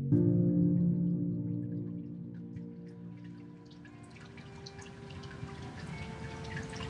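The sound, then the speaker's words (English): Water trickles and drips steadily from a soothing decorative waterfall in the corner of a therapist's waiting room, a soft continuous splashing that grows a little busier over time, with low sustained piped music humming underneath. “steps into the therapist's waiting room with its piped music, the soothing waterfall in the corner, and the incense in the air.”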